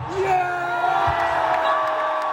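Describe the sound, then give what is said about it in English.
A huge cricket stadium crowd at a World Cup match between India and Pakistan roars steadily and loudly, whoops and shouts blending into a continuous wall of noise with a sustained whistle-like tone running through it. “The crowd was enormous, exceptionally partisan, and exceptionally loud and enthusiastic.”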